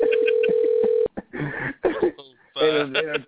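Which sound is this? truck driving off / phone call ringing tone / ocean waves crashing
phone call ringing tone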